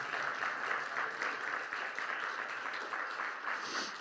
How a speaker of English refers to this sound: Can you say amen, church? Come on, somebody, give God a round of applause.